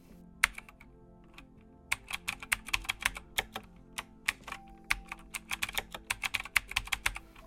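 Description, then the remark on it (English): Rapid typing on a computer keyboard: a steady stream of crisp key clicks in uneven bursts, with a brief pause near the start and no voices. “The behavioral biometric identifier retrieved through input by a keyboard, known as keystroke dynamics, of course only gets better over time.”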